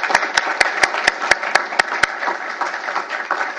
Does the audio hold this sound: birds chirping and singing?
no